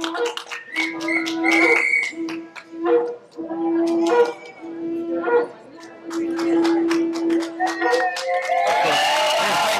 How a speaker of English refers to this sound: Whistles are being blown now for Barry, of course, the whistleblower.